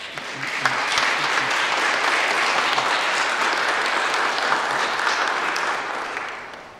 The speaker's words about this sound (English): Come on now, let's give her a round of applause.